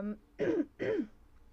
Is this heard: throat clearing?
yes